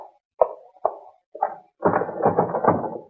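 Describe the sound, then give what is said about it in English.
A door handle is jiggled and tried: three sharp clacks of the latch, then a longer burst of loud rattling as the door is shaken against its lock. No voices. “That door's locked, huh?”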